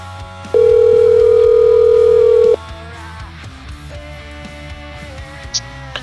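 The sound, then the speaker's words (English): A loud, steady telephone dial tone from a phone system hums for about two seconds as a phone call is set up, then cuts off abruptly, leaving soft background music playing on underneath. “This Ollie's Bar and Grill soundstage phone call is going to be spectacular.”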